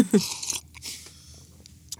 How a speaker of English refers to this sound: And when you've got a bit of an alone time, perhaps when you're having a cup of tea, and I have a sip of mine.